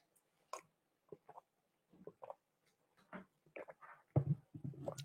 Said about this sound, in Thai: จิบน้ำนิดนึงนะครับ